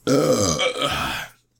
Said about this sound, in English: Okay, can you not burp? What? Stop burping.